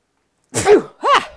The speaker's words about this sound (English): Well, dude, first of all, hold on 1 second. Whew, I got to sneeze.